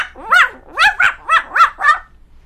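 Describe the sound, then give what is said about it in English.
A dog, Silver Dog, barks six times in quick succession, sharp and fairly loud, with short even gaps between each bark and no one talking. “Thank goodness for Silver Dog!”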